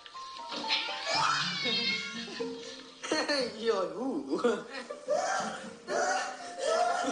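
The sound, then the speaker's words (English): A cat meows and yowls several times in drawn-out, wavering cries while chasing a boy, loud, with excited human voices and some laughter mixed in around them. “Cat chasing the boy.”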